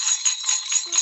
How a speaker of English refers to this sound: the as promised sleigh bells rather than golden envelope